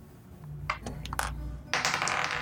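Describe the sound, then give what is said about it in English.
Several quick clattering clicks of dice, rolled by two players, tumbling across a hard table, a few separate rattles followed by a denser burst of bouncing, moderately loud with no talking. “All right, both of you roll.”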